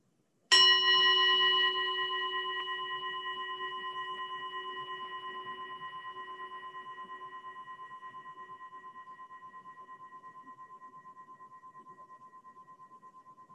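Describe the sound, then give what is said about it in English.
A single meditation bell struck once, ringing with a clear, layered tone that wavers gently as it slowly fades away over more than ten seconds, with no voices. “And we'll just start by listening to the sound of the bell.”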